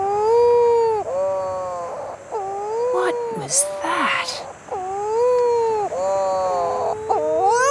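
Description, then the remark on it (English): A mutton bird (shearwater) that has crash-landed on an island at dusk moans in long, wavering, nasal wails that rise and dip in pitch, repeated several times with brief rustling bursts between them, and a person briefly speaks. “A bird has crash-landed and it's... moaning, like it's stubbed its toe. It's a mutton bird, and here come all its friends.”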